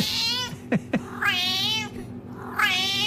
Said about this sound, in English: Okay, so that's a Scouse cat.